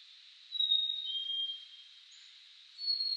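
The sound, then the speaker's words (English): A songbird heard on a hike sings thin, high whistled notes in two short phrases, the first longer and sustained, the second starting near the end, faint, with no voices. “Now, I'm no ornithologist, but I know birds are excellent singers. Just listen to this one I heard while I was out on a hike yesterday.”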